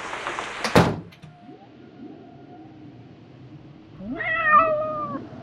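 A soaking-wet cat meows, one drawn-out, wavering meow with rising and falling pitch after a brief clatter like a door opening as it comes in, with no talking.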